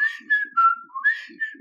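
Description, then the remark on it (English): A person whistles a short, clear imitation of the Mockingjay bird call from the Hunger Games books: a few sustained notes that step down in pitch, then rise again and level off, with soft breathy sounds underneath. “So in the original Hunger Games books, they have the Mockingjay who you do a, and it'll go.”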